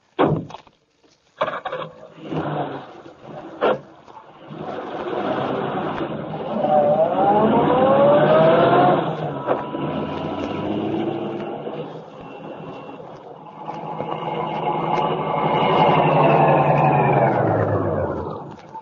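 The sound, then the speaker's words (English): A car engine runs steadily, its drone rising and falling as the vehicle pulls up, with a few sharp knocks and thumps at the start before the motor settles into a sustained hum. “Yeah, just before you drove up. Keep the motor going.”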